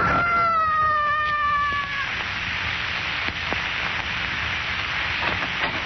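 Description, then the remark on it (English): A man's high, drawn-out scream sliding slightly downward in pitch for about two seconds as he loses his balance and falls 26 stories, then breaking off into a steady background hiss with a few faint clicks. “I heard a scream.”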